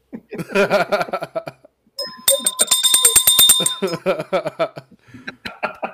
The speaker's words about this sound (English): ring the bell every time someone says he gets it.